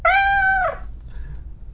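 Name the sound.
cat meowing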